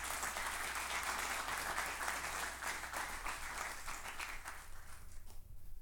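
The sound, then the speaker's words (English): An audience applauds with dense, steady clapping that holds evenly for several seconds before starting to thin out and fade near the end. “Give them a hand clap, will you?”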